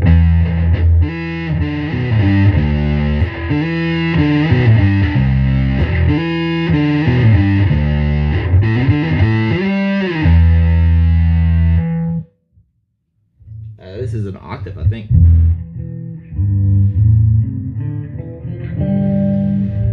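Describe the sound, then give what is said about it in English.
The Jet Fuzz preset of a bass effects pedal, modeled on the Roland Jet Phaser: heavily fuzzed, phased tones play a thick, sustained riff with sweeping whooshing character, cutting out briefly before resuming with sharper, gritty notes. “This is the Jet Fuzz, so this is the Worm Audio, or the Roland Jet Phaser on this.”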